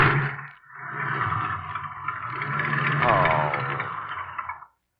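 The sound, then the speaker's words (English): A car engine revs hard and strains for several seconds as the car is stuck in mud, a loud, rough roar that rises and wavers before cutting off abruptly. “Oh, it's no use, darling. We're hopelessly stuck.”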